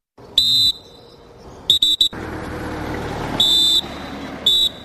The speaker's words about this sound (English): Cameroon troops whistle to indicate it is time for departure as about 3,000 Nigerians prepare to return to the village of Kukawa in Borno State.